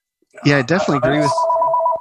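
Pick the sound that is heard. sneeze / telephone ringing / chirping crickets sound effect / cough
telephone ringing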